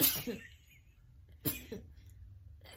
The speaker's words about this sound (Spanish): Tengo que estornudar. Estornude, pues.